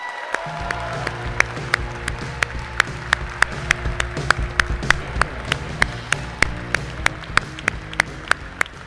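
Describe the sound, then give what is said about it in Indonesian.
An audience applauds for Yunarto Wijaya, clapping together in a steady, quick rhythm of sharp claps over a dense crowd wash, with low sustained tones humming underneath throughout. “Kita kasih tepuk tangan untuk Yunarto Wijaya.”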